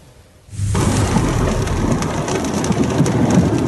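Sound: heavy rain falling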